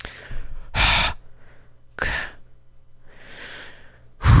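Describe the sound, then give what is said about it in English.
A person does deliberate rhythmic Lamaze breathing: short, forceful puffs of breath about a second apart, with one longer, softer exhale in between and no talking. “I need to do some Lamaze breathing.”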